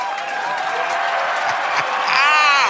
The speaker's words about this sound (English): But in the midst thereof, we had neglected, due to the assault that we were under, to mention these two wonderful additions to the Patreon family. So I think they should get an applause.